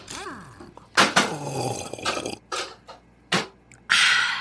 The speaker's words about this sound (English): taking a real big sip of my glass bottle Coca-Cola.